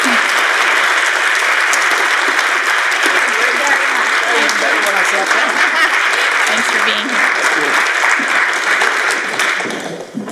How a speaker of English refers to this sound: Well, thank you for all of that excess applause and giving me credit for a movement, which is how this usually works out.